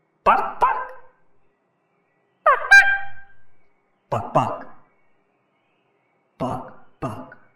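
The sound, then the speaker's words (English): A person dressed in a chicken Halloween costume imitates a chicken's clucking, loud, in four separate bursts of two quick, throaty clucks each, with pauses between them and no other talking. “Why are you dressed as a chicken? It's my Halloween costume. I'm a scary chicken.”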